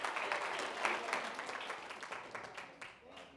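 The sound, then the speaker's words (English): An audience claps their hands after reading a Bible verse about the grace of our Lord Jesus Christ, a sustained burst of applause, dense overlapping hand claps holding steady at moderate loudness and easing slightly toward the end. “Let's clap your hands about that right there.”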